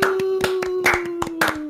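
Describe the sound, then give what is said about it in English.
A quick burst of hand claps by a person clapping for himself, around eight or nine sharp slaps in a fast, slightly uneven rhythm, fairly loud over a steady low background hum. “Can I clap for myself?”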